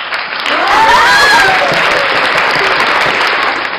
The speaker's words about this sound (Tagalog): Maraming palakpak mo, ah. Pag-isado mo yung pipindot. Hindi ko yun yung pinaka-abusong button. Button, the clap button. So, kasi gusto natin lahat ng validation. The clap validate.